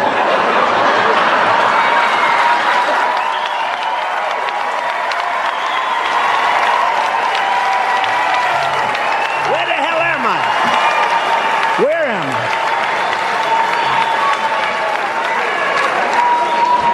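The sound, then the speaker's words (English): A crowd applauds steadily throughout, a dense wash of clapping mixed with cheers and whoops, including a couple of rising shouts near the end, sustained at a loud, even level. “Yeah, it's funny, and the crowd loves it.”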